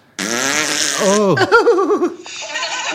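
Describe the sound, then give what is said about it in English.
A loud fart sound effect, one long buzzy blast that wobbles and warbles in pitch for nearly three seconds before trailing off. “No, because they like the farting, don't they, the old ladies?”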